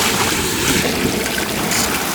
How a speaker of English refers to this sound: As if from a fire hydrant, a massive gout of steaming hot white chowder explodes from the hose.